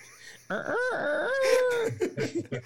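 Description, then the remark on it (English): A man's voice mimics a rooster's crow, one drawn-out cock-a-doodle-doo with rising and falling pitch, loud, trailing off into brief laughter-like bursts. “Reminds me of Puerto Rico. Don't do that. I know you hated that damn bird.”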